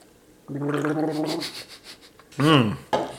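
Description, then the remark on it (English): A wet, bubbling gurgle of liquid being swished around in someone's mouth for about a second, fairly loud, then a brief voiced exclamation and a short breathy sound. “Swish it around.”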